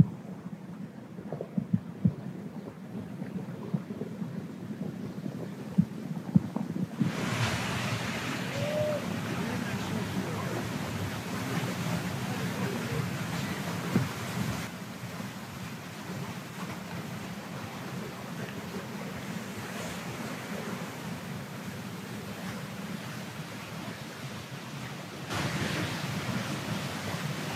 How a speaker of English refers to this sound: Suddenly, there are waterfalls in the desert.